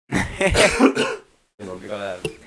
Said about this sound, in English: Let me just cough.